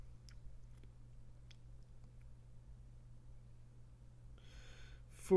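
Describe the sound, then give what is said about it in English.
Crunchy chewing of nacho chips, with a few sparse crisp crunches early on and a denser flurry near the end, all fairly faint over a steady low hum, ending in a brief louder sound. “Get into the crunch.”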